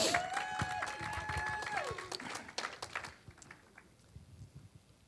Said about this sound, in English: Another hand clap of appreciation.